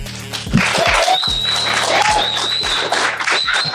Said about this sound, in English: We are here live in Clearwater, Florida. Clap.